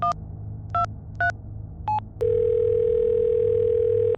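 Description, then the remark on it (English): Four short touch-tone beeps spaced unevenly as Bishop dials the chief on his phone for help, followed by a steady, unbroken telephone tone that holds to the end over a low background hum. “Bishop then grabs his phone and dials the chief for help.”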